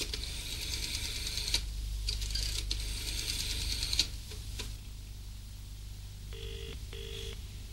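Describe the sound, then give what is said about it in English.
A rotary telephone dial whirs and clicks back through several numbers, then a faint double ring tone sounds on the line. No one speaks. “What's the number? On the pad beside the phone.”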